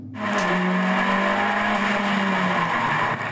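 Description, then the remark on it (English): Racing cars roar, engine pitches sliding as they accelerate, with tires squealing over a steady, loud wash of noise for a few seconds and no voices. “I see cars.”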